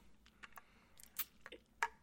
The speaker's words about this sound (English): And so I'm trying to drink some water because calming down and stopping between these is apparently not an option I thought of.